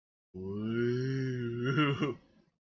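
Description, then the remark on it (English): A single voice imitates about a dozen grunting goblins with a low, gravelly, sustained groan lasting about two seconds, wavering and breaking into rougher guttural sounds before trailing off. “And you just hear, you probably have about a dozen goblins just.”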